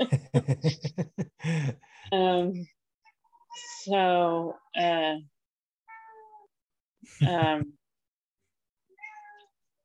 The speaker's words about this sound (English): Oh, there's a kitty. Yes, there's a kitty in the background.